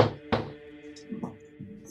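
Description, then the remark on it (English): Two sharp knocks in quick succession, as on a wooden door, followed by a few softer, duller thumps with a faint background hum. “He gives a couple knocks on the door.”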